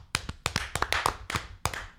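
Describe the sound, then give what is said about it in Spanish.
A short burst of scattered hand claps, about ten sharp, uneven slaps over two seconds, like a few people applauding for Canal América. No one talks. “Venden un aplauso para Canal América, antes que nada.”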